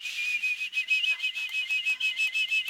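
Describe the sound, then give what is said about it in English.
A tea kettle filled with water whistles steadily on the burner, one sustained high-pitched tone with a breathy, fluttering hiss pulsing over it, unbroken from start to finish. “All right, when it starts to whistle, is that sound water? Is it water? No, it's just the whistle, right?”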